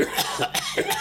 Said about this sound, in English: are you looking for a mute button so you can cough? Yep. Okay. Yep. Well, just cough and I'll edit. Here, I'll do one too.